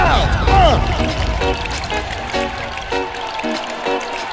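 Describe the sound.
Water gushes from a tap in a steady stream that starts strongly as it is turned on and keeps running, with faint voices breaking in intermittently underneath.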